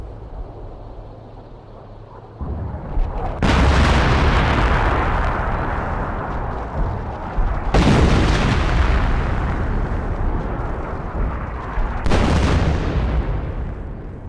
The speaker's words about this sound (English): A heavy bombardment from naval gunfire and artillery began at 1000 hours.